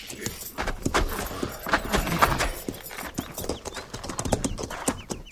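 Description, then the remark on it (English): Cavalry horses walking, being led down to a stream to be watered, with a steady, overlapping clip-clop of hooves, many sharp knocks in an uneven rhythm, fairly loud throughout, with a faint jingle of tack and occasional soft snorting. “Captain says we'll take a break here, ease those cinches, and lead the mounts down to the stream there in water.”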